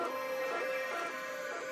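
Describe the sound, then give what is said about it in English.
A rapid prototyper 3D printer runs steadily with a continuous mechanical whir and a high motor whine, holding an even, fairly loud level throughout with no voices. “What if you could use a rapid prototyper to print food?”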